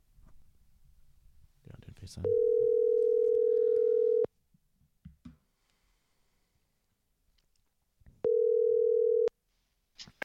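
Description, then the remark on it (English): A steady, loud telephone tone sounds twice: a two-second hum, a pause with faint clicks and rustling, then a shorter one-second repeat, as a call is placed to former LSU Tigers quarterback Josh Booty. “And let's give Josh Booty a ring-a-dang-dang.”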